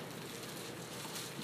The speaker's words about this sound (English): Still hear some pages turning, so I'll wait till everybody gets there.